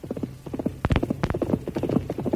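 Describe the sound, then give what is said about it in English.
The hoofbeats of Silver, the Lone Ranger's horse, clip-clop in a quick, uneven rhythm, with a few sharp, louder strikes standing out as the galloping approaches from the distance. “But on the day after that, Tonto jumped to his feet as the thunder of Silver's approaching hoofs could be heard in the distance.”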